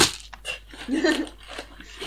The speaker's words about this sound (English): Sorry, I'm rolling on my dice to see which ones I can trust today.